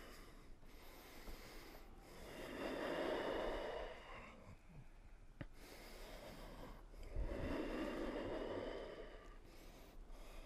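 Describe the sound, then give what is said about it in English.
Two long, slow breaths drawn in through a narrowed throat with a rasping, hissing rush of air, each swelling and fading over a couple of seconds, fairly quiet, with no talking. “It takes a little more muscle energy to pull the air in if the throat, the aperture is more narrow.”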